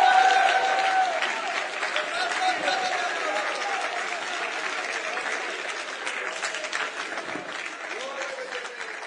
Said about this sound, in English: Oh, you ought to clap your hands and you ought to shout with your voice. He is good.